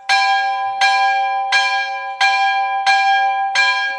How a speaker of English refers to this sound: It's lunchtime. Lunch bell.